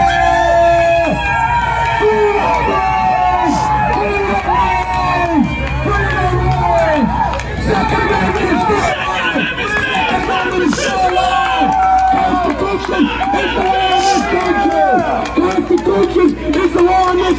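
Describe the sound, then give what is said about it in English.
A loud crowd outside a courthouse in Kenosha, Wisconsin, after a verdict cheers and shouts continuously, many overlapping voices rising and falling in an energetic, sustained roar of excited yelling, some cheering about the Second Amendment. “I know that there are a lot of people cheering about the Second Amendment, but just a very vocal reaction outside the courthouse.”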